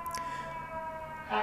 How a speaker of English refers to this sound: And you know, the fire truck agrees with me there, and this is gonna be hilarious listening back to this and just hearing all the interruptions from the street down below.